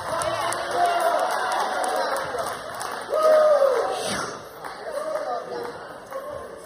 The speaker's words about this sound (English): If you're not used to shouting in a church and the preacher you once had just talked in a monotone language and didn't none of this and didn't shout a little bit, get ready for heaven.